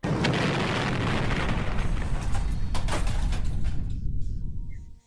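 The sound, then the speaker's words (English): A loud explosion sound effect for a blast rocking a building: a heavy, deep rumbling blast that roars steadily for several seconds with crackling bursts on top, then cuts off abruptly. “Suddenly the building is rocked by an explosion.”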